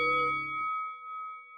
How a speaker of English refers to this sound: They are both on the ground, and you hear the bell. Ding, ding!